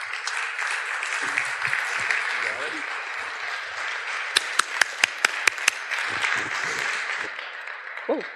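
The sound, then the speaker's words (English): An audience applauds steadily for several seconds as a couple is welcomed out on stage, a dense wash of clapping with a burst of sharp hand claps in the middle and faint crowd voices mixed underneath. “So please give them a warm round of applause”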